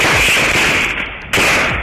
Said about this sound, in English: I've got gunfire coming. All right, he's firing at me.